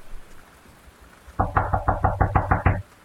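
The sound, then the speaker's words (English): After a moment of quiet, someone pounds on a locked door in a hallway outside a study with a quick, steady run of about nine loud knocks, then stops abruptly. No voices are heard. “Dad, open the door!”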